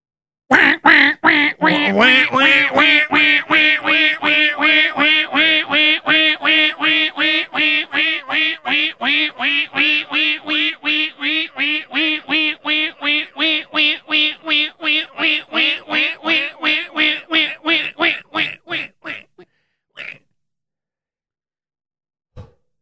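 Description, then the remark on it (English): A novelty bunker alarm sound effect blares a loud, rapid, steady train of buzzy, quack-like pulses for about nineteen seconds, slowing slightly at the end, followed by one lone blip after a short pause. “That was a great bunker alarm.”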